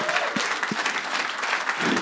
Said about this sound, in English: Let's have a round of applause for the nice little video.